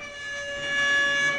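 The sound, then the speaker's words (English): A single loud, sustained air horn blast, blown on a show about the NCAA basketball tournament bracket, with a harsh, steady multi-tone blare held for about a second and a half with no voices over it. “Let's blow an air horn and we'll get to work discussing the Midwest region.”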